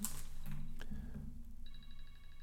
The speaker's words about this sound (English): My phone was ringing there, so there was obviously an edit.